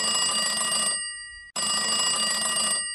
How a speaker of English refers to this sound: Hang on, the red line's ringing.